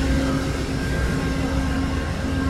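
The GE Genesis diesel locomotives of a train that has just come in at a station platform, thought to be the Coast Starlight, run with a steady, loud, deep rumble and a constant droning hum, with a faint high whine layered on top and no voices.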